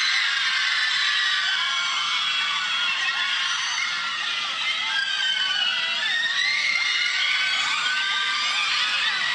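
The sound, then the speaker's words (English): A dense crowd of fans screams and shrieks continuously in high, piercing voices in the street as people chase a car down the street, a loud sustained wall of excited yelling and whooping with no pauses across the whole stretch. “People were chasing the car down the street.”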